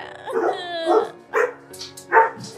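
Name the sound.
dogs barking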